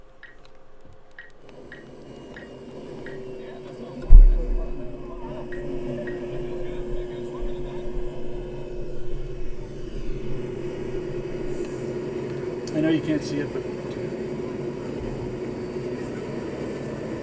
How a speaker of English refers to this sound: they start up this turbine car, which I had not seen before or heard before